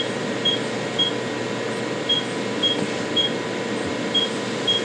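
A laser hair removal device beeps repeatedly, short high-pitched tones in uneven pairs and singles over a steady machine hum.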